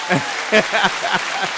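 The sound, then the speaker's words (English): A brief burst of clapping from a small group for the drummer, a few uneven claps at moderate volume, with some faint voice-like murmurs mixed in. “Get yourself a clap,”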